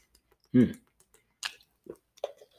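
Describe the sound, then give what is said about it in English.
Someone drinks water: a thick gulp, then a breathy slurp and a few smaller wet swallowing sounds spaced over a couple of seconds. “Needed that water, man.”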